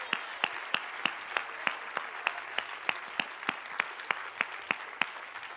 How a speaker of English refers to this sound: Come on, clap your hand to the Lord.